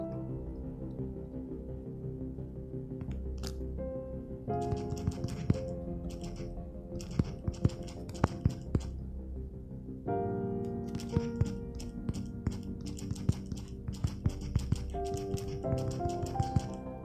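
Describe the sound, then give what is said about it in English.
Quick, light taps on a phone screen as someone types a text message, irregular, over a steady bed of background music, with no one speaking. “I'm sorry, my husband's texting me. Give me a second.”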